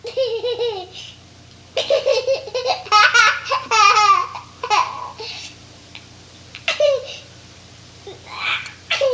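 A sound effect of young children laughing and babbling in bursts, high-pitched giggles and squeals rising and falling with short pauses between, over a steady low hum.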